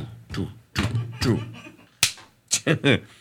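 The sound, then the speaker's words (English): A single sharp, loud slap cracks out midway, representing St. Nicholas striking the heretic Arius, with a voice speaking before and after it in short, emphatic bursts. “Slap, smack.”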